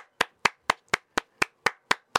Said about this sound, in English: You know, what I'm going to do? I'm clapping up for them. I'm clapping up.